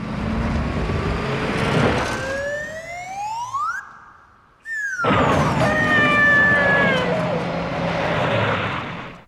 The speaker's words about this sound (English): And that's going back to The Man with the Golden Gun. Okay. And that is the whistle noise that we get when his car does a 360 over the river.